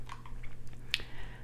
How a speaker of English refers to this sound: Let me drink my water.